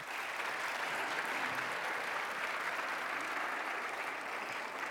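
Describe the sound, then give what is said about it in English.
An audience claps steadily for several seconds, a dense, even wash of many hands with no break, holding at a constant loudness throughout with no voices heard. “Everybody give a round of applause one more time.”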